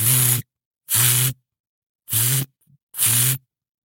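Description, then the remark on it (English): An RV water pump, accidentally left on, cycling on and off: four loud, evenly spaced half-second bursts of low, buzzing motor hum mixed with a hissing whoosh, separated by brief silences. “It's my water pump, and it's pumping, and it's pumping, and it's pumping.”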